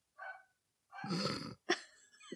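A female dog, Daisy, makes a few short noises on her own: a faint whine, then a longer rough, throaty grumble, followed by a quick sharp huff.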